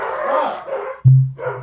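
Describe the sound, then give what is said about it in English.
A neighbor's dog barks in a few rough bursts, then a steady low droning tone takes over for the last half second. No one speaks. “Oh, my neighbor's dog.”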